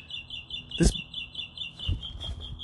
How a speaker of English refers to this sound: Okay, this one bird is testing my fucking patience. I was gonna wait for it, but he's not gonna shut the fuck up, so we're gonna have to just talk over the fucking bird.